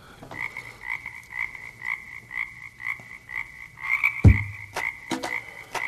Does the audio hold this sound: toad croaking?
yes